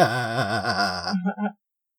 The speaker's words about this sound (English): Oh, I'm so freaking tired, but passed it on. That was a fake yawn, and I passed it on.